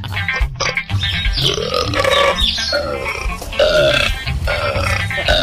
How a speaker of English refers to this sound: we were grabbing the audio for these cow burps. We were watching one where these little masks they put over the cow's muzzle, I guess you would call it, and then it produces their burps into water.